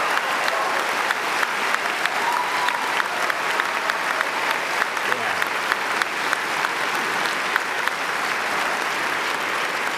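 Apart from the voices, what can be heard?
audience applause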